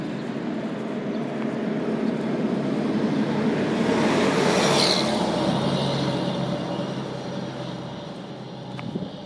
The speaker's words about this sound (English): A little traffic going by. All right, and there's a big fire truck.